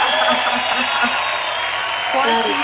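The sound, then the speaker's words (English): A steady burst of applause and cheering celebrating reaching over 25,000 listens, dense and fairly loud throughout, with a few voices whooping and shouting over the clapping near the start and again toward the end. “That's so, let's give us another applause.”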